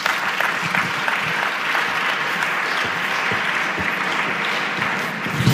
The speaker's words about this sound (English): Thank you very much for going far, but can you please give him a louder, more, a louder applause, please, another round?